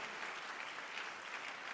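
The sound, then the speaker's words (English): A crowd claps steadily, many hands creating a dense, continuous patter of applause that stays even in loudness throughout, with no voices standing out. “Who is clapping their hands right now?”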